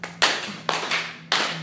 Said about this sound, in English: Because when you clap, what happens? Let's all clap.